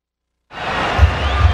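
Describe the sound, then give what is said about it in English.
After a moment of silence, a steady roar of crowd noise, real audio from a game, kicks in and holds, with a couple of dull low thumps underneath near the end. “No, because we mostly just hear a crowd.”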